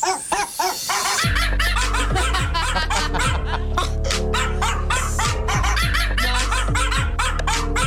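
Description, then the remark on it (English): A dog's barks ring out in a quick, steady rhythm, pitched to follow a tune over a loud, full musical backing with heavy bass, a cover of a pop song sung in barks. “Okay, I think we've heard enough of … the dog.”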